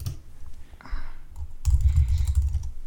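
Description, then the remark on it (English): Quick, uneven keystrokes clatter on a computer keyboard as someone types a password, a short burst of typing that grows busier toward the end, over a low background rumble. “All right, I gotta type my password once and then I'll be done.”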